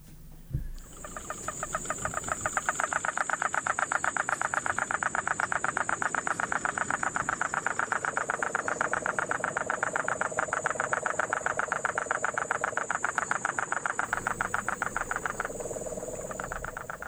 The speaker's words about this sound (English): More than 4,000 toadlets and 12,000 tadpoles, cuties, have been reintroduced to Puerto Rico, and now the wonderful sound of the Puerto Rican crested toad.